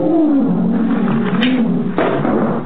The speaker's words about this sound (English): Professor, there's a lion in that room?